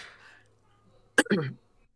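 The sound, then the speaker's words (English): A single throat clearing to dislodge phlegm: a sharp, abrupt burst followed by a brief gruff, rasping rumble, breaking a quiet stretch of faint breathy background. “I just did one of those, like, try to clear my throat because I know what's coming.”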